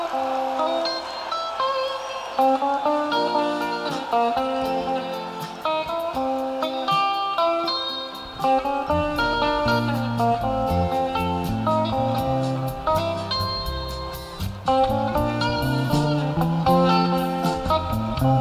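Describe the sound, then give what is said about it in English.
Live concert recording from Shoreline in the Bay Area, October 3, 1987: synth and electric piano played with both hands on different keyboards, sustained chords and bright keyboard notes, a deeper bass line entering about halfway, and crisp percussion ticking steadily throughout. No one speaks. “A little bit of synth in there.”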